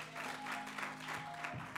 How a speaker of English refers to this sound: So give your pastor another clap.